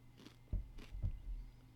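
Soft, close-up chewing with a few moist crunches and low mouth thumps in an irregular rhythm, quiet overall, with no talking.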